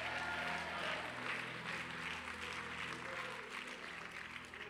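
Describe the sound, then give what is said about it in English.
A large church audience claps continuously with all their might and cheers with scattered shouts of praise, a dense, sustained roar of applause and voices, steady and loud throughout. “Now, if you believe that, clap your hands with all your might. Lift your voice up with a great shout of praise and shout, yes!”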